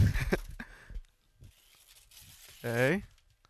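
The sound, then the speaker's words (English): Wrapping paper rips in a few quick, crinkly bursts as presents are opened, followed by quieter rustling and then a short voiced exclamation from someone. “Sorry about your wrapping paper. A little ASMR for the fans.”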